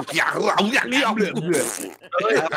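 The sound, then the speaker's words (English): A person vocally imitates a Tasmanian devil's scream with a raspy, growling, sputtering series of harsh, wavering cries, loud and continuous for a couple of seconds, with a brief pause near the end. “Not fast, but they scream. But they have that funny sound.”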